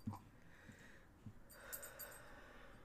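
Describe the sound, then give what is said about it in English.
Luna, a rescued dog, walks around quietly, with soft padding steps and short bursts of snuffling and sniffing, all faint and without any talking. “Sorry, that's Luna just walking around minding her own damn business.”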